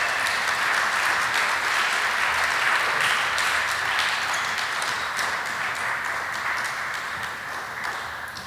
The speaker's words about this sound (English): This is our class of 2021. So if you want to give them a round of applause.